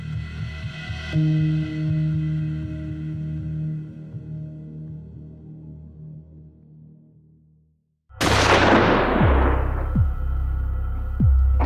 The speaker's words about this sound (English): The sound of a shotgun being discharged in an enclosed area like this is absolutely ear-shattering.